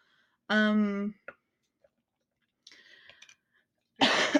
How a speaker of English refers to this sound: if you hear sniffles or coughing, sorry, not sorry. I'm starting to get sick and she is getting over being sick.